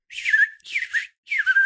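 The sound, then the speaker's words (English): A short whistled jingle introducing the segment A Little Bird Told Me: three phrases, each sliding downward from a high pitch with brief gaps between them, clear and alone with no talking. “Uh-oh, you know that sound. It's that's the introduction to a segment A Little Bird Told Me.”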